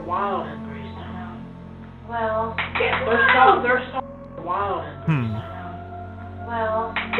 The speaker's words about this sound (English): Recorded in the bedroom of …, you'll hear marbles falling and then a child say, "It's mine." You can definitely hear something like a little kid squeak right there.